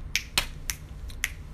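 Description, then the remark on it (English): Six sharp finger snaps in an uneven rhythm, crisp and bright, one of them noticeably softer, with a low steady hum underneath and no voices. “Watch that Hannah Montana where it's like boom, snap, clap, boom, snap, clap.”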